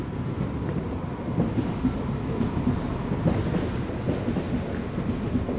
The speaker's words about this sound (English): And what you can hear there is the trains leaving Connolly Station, going northbound.